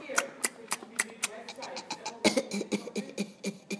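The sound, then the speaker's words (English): A voice does an impression of another person's coughing and throat clearing: a steady run of short, sharp cough bursts, then a denser flurry of rougher, sputtering hacks, moderately loud. “Oh, well, it's you coughing and making irritating noises and chewing Cadbury's crunchy biscuits.”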